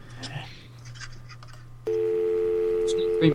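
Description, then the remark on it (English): After a stretch of low hum and faint muffled sounds, a loud, steady telephone dial tone cuts in abruptly and holds unbroken to the end, with a brief click near the close, as someone rings a helpline. “So what we're going to do, let's ring the helpline and see who we get put through to and who's going to answer our questions today.”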